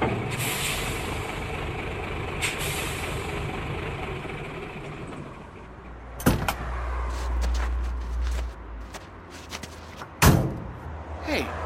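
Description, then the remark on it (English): Two heavy truck doors slam shut a few seconds apart, loud, over the low rumble of the idling truck engine, with faint shuffling as two people climb out of the truck. “Get out of the truck, both of you. Now!”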